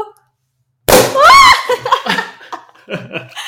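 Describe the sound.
After a moment of silence, a cork pops out of a bottle with a sharp, loud burst, immediately followed by a high squeal of laughter and then excited voices talking.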